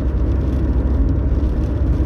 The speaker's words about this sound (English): I'm on my way to Bristol, driving cross country from Westbury, where I live in Wiltshire. It's a very rainy day today.